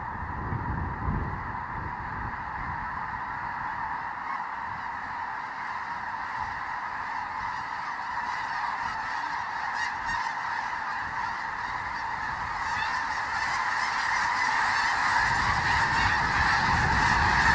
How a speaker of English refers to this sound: what we have over here is about 30 to 40,000 snow geese on one of our wetland units